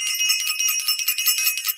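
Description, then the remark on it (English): A bell rung rapidly and continuously for a couple of seconds, a bright, high-pitched shimmering clang with a fast, jittery pulse and no voices. “I want to ring the bell for Self-Invested, sending them so much love.”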